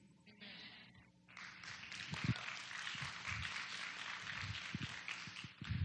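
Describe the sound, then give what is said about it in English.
An audience of parents breaks into applause, starting softly and swelling into steady, dense clapping that holds for several seconds, with a few scattered cheers mixed in. “I'm glad you parents are clapping because now I'm coming for you.”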